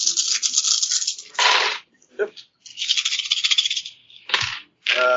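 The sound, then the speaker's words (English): Ten dice clatter and rattle across a hard tabletop in a few busy bursts separated by short pauses, with some brief scraping noise in between. “And I'm going to use a relationship with the Les Paul to roll 10 dice.”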